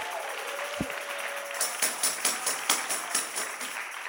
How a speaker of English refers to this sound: Well, all the honest people in the church ought to clap their hands.